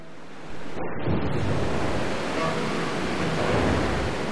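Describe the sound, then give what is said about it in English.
Rough sea waves surge and crash in a steady, loud roar, with a gusting north wind blowing over the water in fog throughout. No voices are present. “A north wind had brought a disorienting fog and a turbulent sea.”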